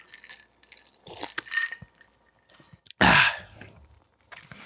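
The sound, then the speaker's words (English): A drink being sipped: faint clinks of a glass, small slurping and swallowing noises, then a loud, breathy exhale after the sip. No talking. “Let me take a sip.”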